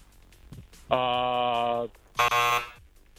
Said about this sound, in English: Ooh, yes, after the buzzer, after though. The buzzer.